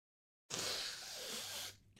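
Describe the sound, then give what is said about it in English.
A single forceful nose blow, a rough, airy burst lasting just over a second after a moment of silence, then cutting off abruptly. No voices. “I'm blowing my nose.”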